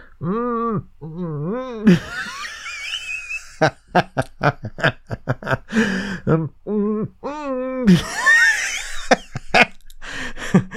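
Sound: humming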